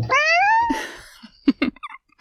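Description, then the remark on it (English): A pet cat named Skipper lets out one drawn-out meow that rises and then falls in pitch, followed by a few soft, scattered taps and rustles with no talking. “No, no, Skipper, not a bad cat.”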